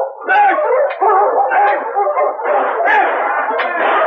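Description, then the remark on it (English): A pack of sled dogs barks, yips and howls all at once, a loud, dense chorus of overlapping voices that keeps going without a break for about four seconds. “All right, on your feet, you mutts.”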